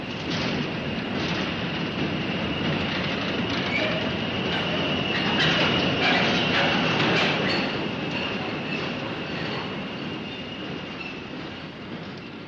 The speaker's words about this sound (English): The next sound will be a diesel railway locomotive.